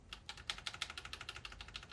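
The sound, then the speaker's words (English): Rapid, steady clicking of computer keyboard keys while playing a video game, roughly a dozen crisp taps in quick rhythm, fairly quiet, with no voices. “Can I hold down on the keyboard and have it run?”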